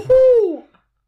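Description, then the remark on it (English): A single owl-like hoot imitated by a human voice, fairly loud: one sustained, slightly falling tone of about half a second that fades out, with no other sounds. “Is that an owl? That was really good.”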